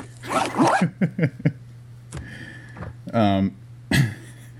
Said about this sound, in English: That's why I give it 5 zippers. All right. I just want to start by saying I hope that fifth zip was the up and not the down, for the sake of the rest of this episode.